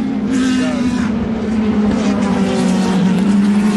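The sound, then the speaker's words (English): Loud, sustained roar of petrol race car engines, an Aston Martin and a Dome at racing speed, a harsh droning whine that holds steady with slight shifts in pitch throughout. “You probably already noticed that the Peugeots and the Audis make almost no noise whatsoever, and it's the petrol cars screaming.”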